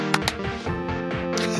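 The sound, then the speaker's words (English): Two sharp, loud hand claps, made to sync the audio for editing before a recording starts, land in quick succession near the start, followed by a softer burst later, all over a steady, sustained tonal background. “before we start the recording, we have to clap to sync things for our audio editor”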